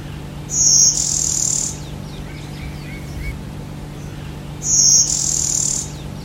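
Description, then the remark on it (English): A bird with an eye stripe, blue-gray wings and two distinct wing bars gives two harsh, buzzy calls, each lasting just over a second, high-pitched and raspy, separated by a few seconds of quiet with faint softer chirps and a low steady hum behind. “We were hearing the buzzy fart sound, which we will put in here because Bill got a good recording of it.”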